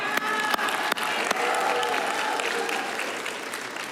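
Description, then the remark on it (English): An audience breaks into sustained applause for the scriptures being read during a sermon, dense overlapping claps forming a steady wash of sound with faint murmuring voices mixed in, holding fairly loud throughout before easing slightly at the end. “That's okay, you can clap for the scriptures.”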